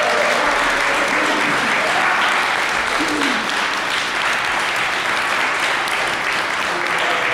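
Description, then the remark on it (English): Steady, dense audience applause for four women guests fills the whole stretch, a continuous wash of many hands clapping at an even, loud level with no voices standing out. “Okay, can we give a round of applause to these four lovely women?”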